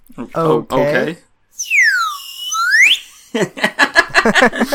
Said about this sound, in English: Okay. I had my slide whistle ready. Sometimes it's really loud, so I just wanted you to be ready for it. The levels were good on that one. Yeah, no, I think I figured out how to make my slide whistle not completely destroy everyone's ears.